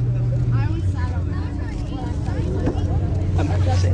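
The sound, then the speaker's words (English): A steady, loud engine drone rumbles inside a moving bus, its low hum shifting pitch slightly, while indistinct chatter from passengers murmurs underneath throughout. “We're on a bus, not a fucking zoo cart.”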